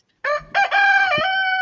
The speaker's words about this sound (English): See, that's how to get up to a nice morning cockerel.